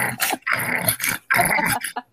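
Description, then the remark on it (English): Harsh, rumbling growls and snarls made by people come in three or four loud bursts with brief gaps between them, each rough and throaty, with no talking. “We'll sit here and we will growl and snarl at you until you shut up.”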